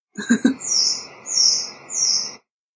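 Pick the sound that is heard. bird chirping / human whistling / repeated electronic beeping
bird chirping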